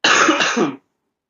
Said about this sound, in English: sorry, I'm just gonna cough for a second.